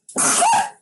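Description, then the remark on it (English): A single loud sneeze, a sharp breathy burst that lasts under a second and then stops, with no talking around it. “Bless you. Bless you.”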